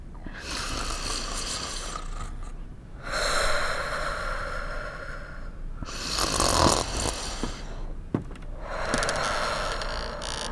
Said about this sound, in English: Just snore along with him. You'll scare it away and lull yourself to sleep.